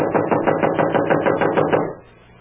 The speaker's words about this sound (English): Try him again. I'm wearing out my knuckles on this door. Well, try the bell. I did. Not working as usual in these places. Well, knock again.